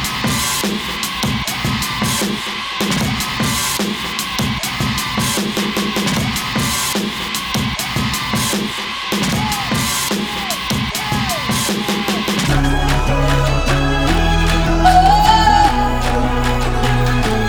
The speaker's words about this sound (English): I love that sample of like the kids going, yeah, that crowd, and they're like, and then it builds up into the clap clap. It's like the perfect intro for a rock concert, stuff like that.